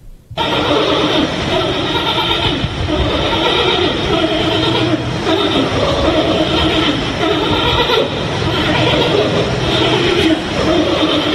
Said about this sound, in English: So I have the audio. You want to hear what it sounds like? Two pandas hooking up. They have not had sex in 10 years.